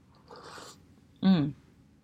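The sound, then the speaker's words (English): A soft, airy slurp of someone sipping hot coffee from a large cup, followed a moment later by a short, louder voiced exhale of satisfaction. “But anyway, all that said, I'm going to drink some coffee while we're having this discussion. So let me take a sip right now so I don't pass out while I'm talking to you guys.”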